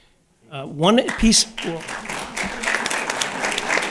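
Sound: audience applause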